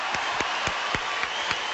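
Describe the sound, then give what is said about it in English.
Steady audience applause for Supreme Master Qinghai, a dense wash of many hands clapping with a few sharper individual claps standing out at a regular rhythm. No one speaks over it. “Ladies and gentlemen, how about another round of applause for Supreme Master Qinghai?”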